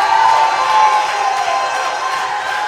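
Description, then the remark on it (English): A large crowd shouts and screams together in a loud, sustained roar, many voices blending into a dense wall of cheering that barely dips over a few seconds. “You're not just screaming to scream.”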